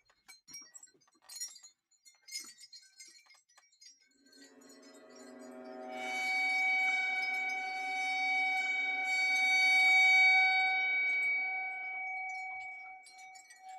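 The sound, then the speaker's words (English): A few light metallic clinks give way to a bowed gong swelling into a sustained, shimmering drone, rich in layered high overtones that waver and ring steadily for several seconds. “And last thing, again, this is a common sound, but I think, again, just to kind of put you into Crumb's world a little bit, is bowed gong.”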